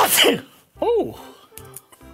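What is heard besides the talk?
sneeze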